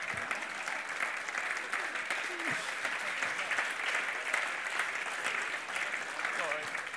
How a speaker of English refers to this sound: You always get the enthusiastic clap who's thinking, yeah, it's lunchtime. Lunch, yeah, brilliant.